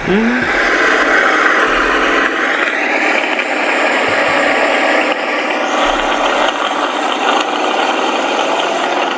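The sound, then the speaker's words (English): A flashy, classic-looking sports car engine roars loudly and steadily with a harsh, rattling mechanical texture, holding its intensity for the whole stretch with brief dips and surges in pitch. “And my favorite part about this vehicle, that's a, you know, if I were to own a sports car, it's a nice one.”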